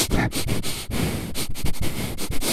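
Someone sniffs repeatedly through the nose, a quick run of short, breathy inhales, fairly loud and uneven in rhythm, with no talking.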